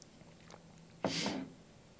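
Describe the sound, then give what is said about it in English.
A single quick sip of water, a short hissy slurp lasting about half a second, rising suddenly out of near silence and fading away with no talking. “I'll just drink some water instead.”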